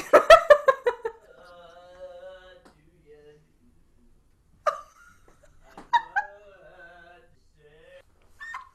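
dog whimpering

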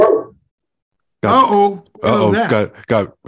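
dogs barking

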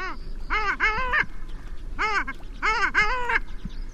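long-tailed duck calls

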